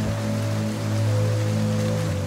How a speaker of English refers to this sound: It's raining in the barrio.